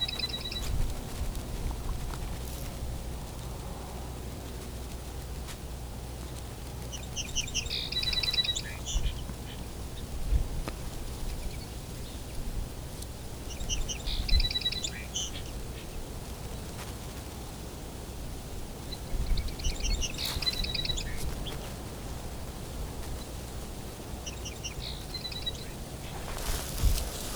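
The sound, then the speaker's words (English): Two male song sparrows trade short, bright song phrases back and forth, each burst separated by several seconds of steady outdoor hiss and low rumble. “Bit of back and forth between two song sparrows here.”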